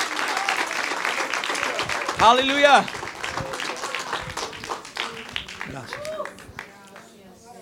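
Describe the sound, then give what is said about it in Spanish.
A church audience breaks into sustained applause for God during a bilingual Spanish-English sermon, dense clapping while voices call out over it and a single exclamation rises briefly above the crowd. “If you're going to give him applause, don't hold back.”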